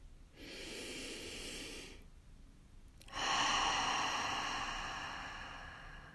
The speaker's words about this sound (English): Take another breath, breathing this truth in.